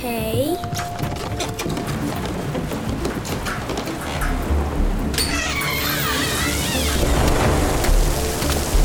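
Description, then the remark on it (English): Steady, loud rain hisses throughout while deep thunder rumbles roll in partway through, mixed with swirling, swooping tones and faint voices underneath. “Oh man, is it raining?”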